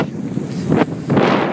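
Gusty wind buffets the microphone, a loud, rumbling whoosh that swells in two stronger bursts and then holds steady, with no voices.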